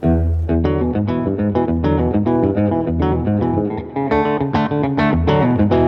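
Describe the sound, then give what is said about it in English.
An electric guitar played through a Fender compressor distortion pedal, with a mild, crunchy overdrive like a lower-wattage amp pushed a little, plays a steady run of rhythmic, ringing notes, loud, with no talking over it. “It's just a little bit of crunch, like it's taxing an amp a little bit, yeah. Like a lower wattage amp.”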